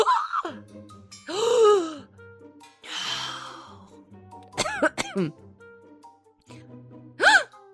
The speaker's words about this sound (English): gasp.